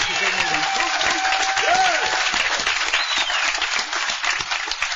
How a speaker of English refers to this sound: And this committee deserves a tremendous round of applause from us, I'll tell you.